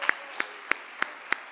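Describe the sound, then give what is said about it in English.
An audience claps hands together in a steady, even rhythm, five sharp claps about a third of a second apart, crisp and moderately loud with no voices over them. “Would you clap your hands with me this morning?”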